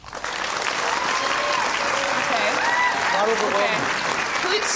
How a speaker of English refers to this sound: Scattered applause. That's good. Scattered applause.